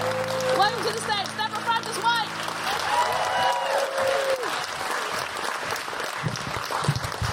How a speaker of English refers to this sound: Digital photography. Woo! Yes, absolutely. There's a big cheer for digital photography. Come on, make it a bigger cheer.